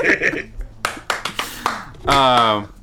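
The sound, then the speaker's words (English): A handful of sharp, loud hand claps from several people land in an uneven rhythm, with brief bursts of voices before and after them. “They can't tell who's clapping, so it's just a bunch of claps.”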